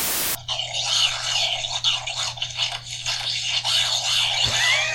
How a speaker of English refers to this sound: Sounds like cats fighting. Or like a raccoon. Sounds like an animal going at trash.